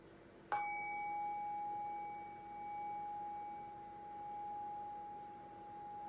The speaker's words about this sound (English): And right now I'll ring the sound of the meditation bell. Rest your awareness on the sound of the bell. Allow the decay of the bell to guide your awareness into silence.